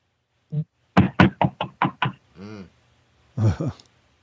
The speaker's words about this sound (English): Six rapid fire tree knocks, and now it's coming from 3 o'clock, so almost the opposite direction of what she did. And it was, again, much louder. It was amazing.